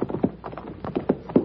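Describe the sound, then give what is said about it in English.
Horse hooves clip-clop in a steady, uneven rhythm of hollow knocks, fairly loud, with no voices, as a horse is ridden up a hillside. “Carver and the girl sat their horses, staring down the other side as I rode up.”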